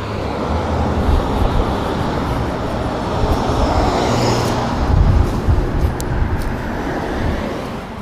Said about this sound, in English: A lot of cars coming.